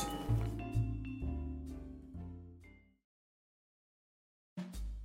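Oil-toasted breadcrumbs are poured into a bowl with a burst of clinking, ringing clatter for about three seconds, then a pause of silence before another short clatter. No one speaks.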